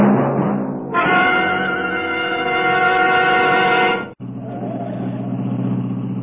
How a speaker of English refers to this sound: There's no hurry to get home. Who can relax in this mess of traffic? There must be a wreck or something up ahead.